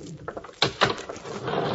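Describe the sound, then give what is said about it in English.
Elevator doors slide open on the 34th floor with a couple of soft mechanical clunks, then a steady rushing hiss as they glide apart. Moderately loud, with no voices. “The elevator came to a stop on the 34th floor.”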